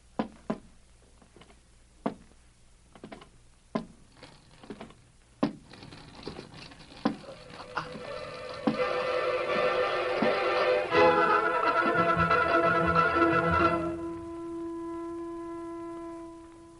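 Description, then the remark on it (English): A run of sharp, evenly spaced clicks gives way to a dentist's drill drilling out a bad spot in a molar before a filling, whining with a dense, buzzing high pitch that grows louder, then cuts out, leaving a faint steady hum. “Now, this drill may hurt a little, but not for long, young fella.”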